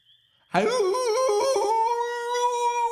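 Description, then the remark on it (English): A loud, drawn-out howl out in the night bursts in after a brief hush, rising sharply and then holding a steady, wavering pitch for a couple of seconds, piercing with no talking. “That wasn't me, that howl out in the night.”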